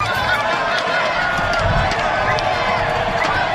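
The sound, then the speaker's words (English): A large outdoor crowd at the Toronto Argonauts' parade in downtown Toronto chants "One More Year" in unison to quarterback Ricky Ray, a loud, steady wall of many voices mixed with shouts and cheers, continuous for the whole stretch. “Well, someday was less than 48 hours as the Toronto Argonauts celebrated with a parade in downtown Toronto, and the crowd began chanting "One More Year," and Ricky Ray responded.”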